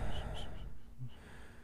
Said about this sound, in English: sorry, I'm just clearing my throat. Just getting ready.